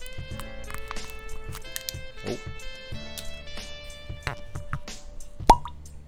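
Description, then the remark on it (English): A single crisp, loud cork pop from a Belle Meade bourbon bottle lands near the end over a soft, steady bed of background music with light rhythmic taps. “So let's pop this thing and see what it tastes like before we move on to the rest of our story.”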